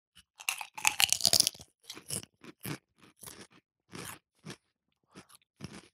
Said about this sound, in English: Which is why something like this would be good, because they're 98 calories per serving. Nice, mate. Yeah. So should we try a little lentil chip, sea salt flavored? Cheers. Cheers.